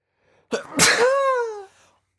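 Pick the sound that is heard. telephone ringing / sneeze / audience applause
sneeze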